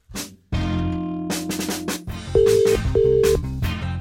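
Telephone sounds of a wake-up call being placed: a burst of dialing tones followed by two steady ringing tones repeating at an even pace, fairly loud and clear over a dense, humming background with no one talking.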